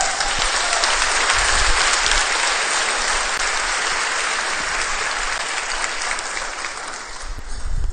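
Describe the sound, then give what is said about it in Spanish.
Steady, loud audience applause fills the whole stretch, a dense crackle of many hands clapping at once that holds its level and thins slightly near the end, with no voices over it. “Dale un fuerte aplauso.”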